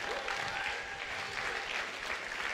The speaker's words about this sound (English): Somebody give the Lord a clap and a shout.